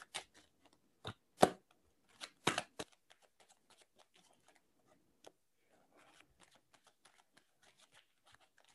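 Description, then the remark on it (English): Tarot cards being shuffled close up, with a few sharp riffling bursts and slaps early on, then a long stretch of soft, scattered card flicks and taps. No voices. “I'm going to start shuffling now.”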